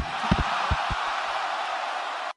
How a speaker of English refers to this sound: If you heard that crowd reaction, there was no question. Our winner is Samoa Joe, BC.